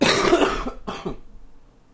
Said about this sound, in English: I'm going to cough right now. This is gross. I'm going to cough off mic, but this is what bronchitis sounds like.